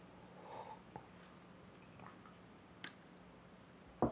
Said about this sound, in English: I'm going to take a sip of tea, not because I'm being shady, but because I want to sip tea while you think about that.